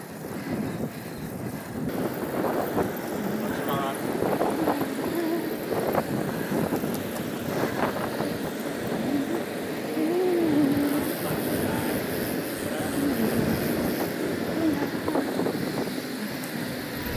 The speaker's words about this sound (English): What are we doing about these street sweepers? Should we pass them? I'm not going in between.